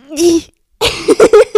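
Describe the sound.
A person mimics a stifled sneeze: a rising, drawn-in 'ahh' breath, a brief pause, then three or four quick, muffled bursts squeezed out in rapid succession, fairly loud.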